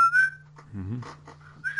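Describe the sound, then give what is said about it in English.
A clear, high whistled melody, the whistle song from a video game, rings out in short phrases at the start and end, with a low voice briefly talking in between; the tune is said to copy Super Mario World. “And then the whistle song.”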